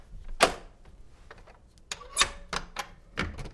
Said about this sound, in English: For a while, she couldn't hear any footsteps at all. Then, the front door being unlocked. From the inside.